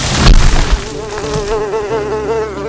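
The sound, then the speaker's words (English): A fly buzzes in a steady, wavering drone with a slight warble in pitch, fairly loud and alone, after a brief rougher burst of wingbeats at the start. “Then along came a buzzing fly.”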